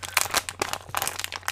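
Crinkly plastic packaging of Jell-O gummies being handled and pulled open, a busy run of sharp rustles and crackles with brief pauses, no voices present.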